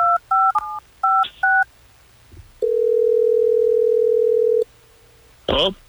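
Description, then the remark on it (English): A quick run of touch-tone dialing beeps, then a steady, loud ringing tone holds for about two seconds before a brief burst of a voice picking up at the end; a phone call placed on air by hosts of Hot 101.5 radio in Tampa Bay. “Well, let's get him on the phone and try to figure it out.”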